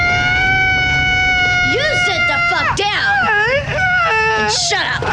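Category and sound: man screaming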